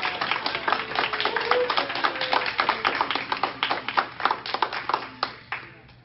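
An audience applauds steadily for about six seconds, dense overlapping hand claps at moderate volume that taper off toward the end.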